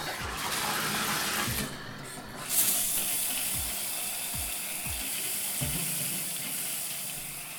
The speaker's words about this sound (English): do you feel cleaner now, or do you feel like you're covered in all those microbes that came out of the shower head there?